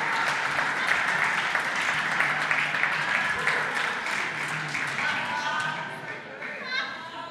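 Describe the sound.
A large indoor crowd claps steadily for several seconds, a dense, continuous wash of applause with voices mixed in, easing off slightly toward the end.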